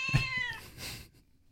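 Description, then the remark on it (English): A cat lets out a strained, drawn-out meow that slides downward in pitch, followed by a rougher, breathier cry, sounding distressed as it struggles. It is not loud, with no one talking. “You'll also notice the cat struggling a little bit, but only at first.”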